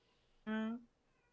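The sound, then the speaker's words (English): A single short meow from a female cat that is back outside, clear, with a slight upward lilt, heard alone against a quiet background. “The cat is she's all right. She's back outside. I think she wants me to come.”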